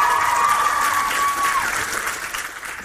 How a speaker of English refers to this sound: She got a lovely dress, everybody. Bless you. You look lovely. Give her a big cheer.